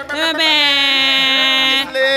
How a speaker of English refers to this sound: The air horn? During an interview, just air horns. We do our own.